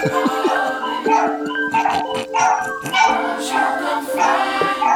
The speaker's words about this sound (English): Somebody at the door. She be acting like she a real guard dog.